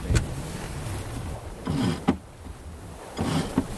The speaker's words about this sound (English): There's the wind. There's the beam.